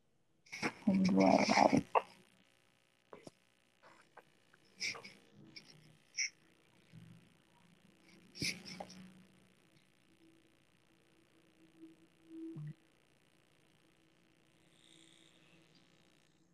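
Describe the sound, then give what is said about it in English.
Scattered sharp clicks and small crackles from headphones pop up irregularly over a quiet, hissy background, some fairly loud, others faint, with soft murmuring sounds in between. “Do you hear that clicking Yeah, sound on your yeah.”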